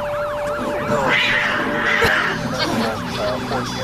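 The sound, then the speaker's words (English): Roosters that run loose in the street crow over and over, their high, wavering calls rising and falling in quick overlapping arcs against a steady background din, with no one talking. “Oh, you forgot the roosters.”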